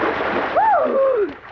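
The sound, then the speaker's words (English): Someone dives into clear water about 30 feet deep with a hissing splash that keeps churning and spattering, while a brief rising-then-falling whistle-like tone sounds over it. “Can you dive? Oh, sure. Can you touch bottom?”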